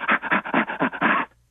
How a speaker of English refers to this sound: In fact, if you take recordings of primate laughter and play them to groups and ask people, what are you listening to? No one would recognize it as laughter. I'll give you an example of chimpanzee laughter, for example.